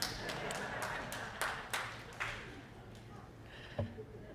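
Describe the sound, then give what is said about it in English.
A few scattered claps ring out, sparse and uneven, a couple of people clapping briefly against a low murmur of background noise. “What show was it like that where they, you know, the old TV shows, they would have the canned applause, but maybe it was laugh-in, one of those shows, you would hear just about what I heard a minute ago. A couple people clapping.”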